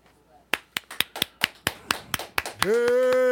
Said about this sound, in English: Hand claps.